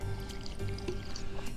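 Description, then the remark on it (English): Red wine, a Côte du Rhône, pouring steadily into a glass, a continuous gurgling fill with faint splashy trickles, lasting just over a second with no talking. “Oh, hey, is Côte du Rhône okay? Yeah, sure, of course.”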